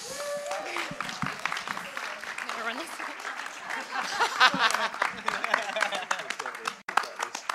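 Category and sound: crowd, audience round of applause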